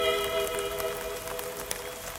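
Light rain patters steadily on a surface, a soft, scattered spray of tiny drop ticks over a faint steady hum, with no voices present.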